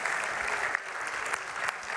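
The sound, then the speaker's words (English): A crowd gives itself a round of applause, a dense wash of many hands clapping at an even, fairly loud level with a few sharper claps standing out, no voices on top. “Give yourselves a round of applause for that one.”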